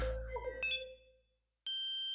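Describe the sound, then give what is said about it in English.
A fading, wavering electronic hum trails off into a moment of silence, then a single steady computer beep sounds, a clear held tone lasting about half a second. “A quiet beep interrupted the tense moment, and Doug discreetly pulled the chip card out of the computer behind his back.”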